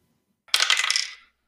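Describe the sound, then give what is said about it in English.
Dice clatter and tumble across a hard tabletop in a quick, bright rattle lasting under a second, fairly loud, then settle into silence. “Let me get a couple more dice here.”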